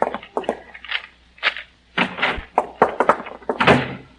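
A door is worked open and pushed shut, with a quick run of latch clicks, rattles and wooden knocks ending in a solid thump, and no voices.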